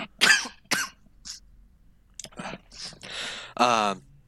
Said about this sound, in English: excuse me, I got a cough.